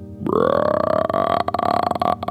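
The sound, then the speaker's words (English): A long, loud, rumbling burp produced by a human voice imitating a dinosaur's burp, rising in pitch at the start and sustained for about two seconds with a croaky, rattling texture, heard alone. “The power of the burp makes you fly back in the air and fall on your bum.”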